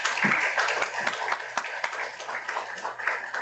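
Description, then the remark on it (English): Steady applause from the audience at the eighth Paul Dworkin lecture, many hands clapping in a dense, continuous patter that holds at a fairly even level throughout, with no voices on top. “Paul, please, round of applause for Paul.”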